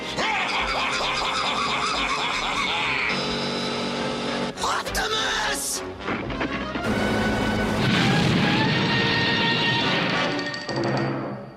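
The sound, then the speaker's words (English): A head-on vehicle crash erupts into a giant explosion: loud, dense crashing bursts give way to a sustained, roaring blast that swells and rumbles before tapering off. “The two crash into each other dead on as we see a giant explosion.”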